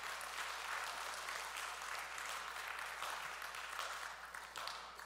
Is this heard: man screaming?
no